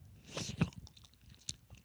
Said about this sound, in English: You're trying to chew in the most, like, annoying way possible. Yeah, I tried, but it's too hot.